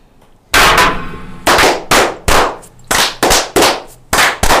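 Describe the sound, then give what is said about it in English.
A group of brothers claps in unison as a 'fire' salute in a toast ritual, about nine loud, sharp cracks in a quick, slightly uneven rhythm, each leaving a brief ringing tail. No one speaks. “You can all tell that we're all right-handed because when you swap to your hands to clap left-handed, it never comes out the same.”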